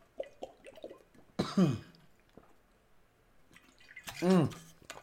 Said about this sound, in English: Let me get a quick sip of water.